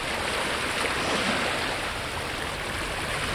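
Gentle waves lap steadily against the shore of the Sea of Galilee (the Kinneret), a freshwater lake in Israel, a continuous broad wash of water with no distinct breaks, moderately loud, with no voices.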